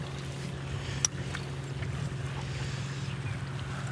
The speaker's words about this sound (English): Couple of boats is coming through the channel here. Couple more trawlers coming in from out the Pacific. They're fucking units, eh? Just look at the size of the bastards.